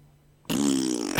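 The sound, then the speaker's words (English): After a moment of silence, a loud, buzzy fart noise made into a telephone erupts and holds for nearly a second with a rough, sputtering tone before ending with a sharp burst. “Farted into the phone clearly”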